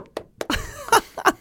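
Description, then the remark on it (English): A voice imitates a door slamming to act out someone walking out: a quick string of sharp, breathy bursts followed by a drawn-out voiced groan and two louder, punchy thuds at the end, fairly loud. “Make a sound of a door slamming because I'm walking out.”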